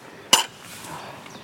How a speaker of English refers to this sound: And I'm out climbing a hill. My daily exercise with my dog Idris. So if you hear a jangling, that's his collar.